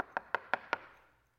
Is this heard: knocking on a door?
yes